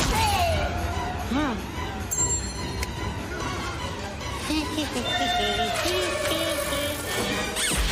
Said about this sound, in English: So that's Jim with explosions all around him.